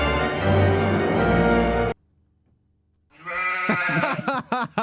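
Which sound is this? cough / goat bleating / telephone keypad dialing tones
goat bleating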